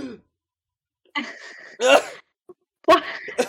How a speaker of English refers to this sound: So, I gotta sneeze. Oh, it's stuck in there. Oh, no. Oh, there you go.